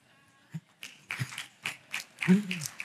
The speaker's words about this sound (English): It must have been a lady who clapped that one off.